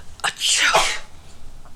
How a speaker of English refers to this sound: I have to sneeze. Hold on.